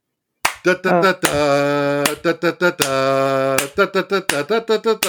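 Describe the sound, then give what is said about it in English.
A single voice imitates a famous classical music piece set to a hand clap beat, singing in short clipped syllables and two long held notes, with a few sharp percussive clap-like hits marking the beat. “where they took all of these famous classical music pieces and set them to a hand clap beat.”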